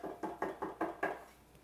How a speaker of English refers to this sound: I'm standing at your door. I'm knocking. Open the door and let me in.